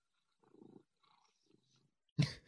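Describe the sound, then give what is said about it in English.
A cat purrs softly in a couple of short, rumbling bursts, then a sudden louder, sharper sound cuts in at the end. No one speaks. “my cat, sorry.”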